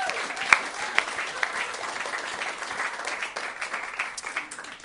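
audience applause

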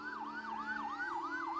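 fire engine sirens

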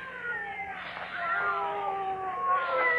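cats meowing and yowling

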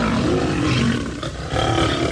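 lion roaring

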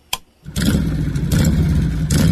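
motorcycle engine revving

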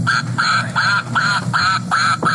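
duck quacking

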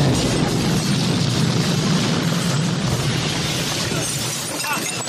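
movie explosions

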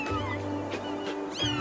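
cat meowing

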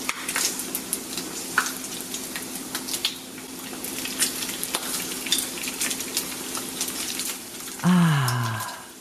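food sizzling

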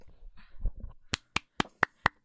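hand clapping

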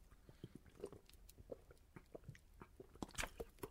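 sipping water

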